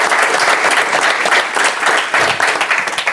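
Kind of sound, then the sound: crowd, applause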